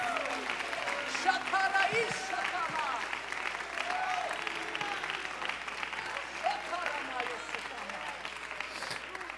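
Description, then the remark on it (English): A large crowd claps steadily and enthusiastically while voices shout and cheer throughout, a dense, sustained roar of applause and exclamations: a hand clap of praise unto the Lord and shouts of triumph. “If you believe that, would you help me give a hand clap of praise unto the Lord? Would you shout with a voice of triumph?”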